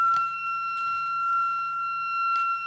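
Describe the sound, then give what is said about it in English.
A water pipe lets out a steady, high-pitched whine with ringing overtones and a faint low hum underneath, holding unbroken throughout, with occasional soft clicks and rustles. “Oh, it's a water thing. That was crazy. That was a pipe.”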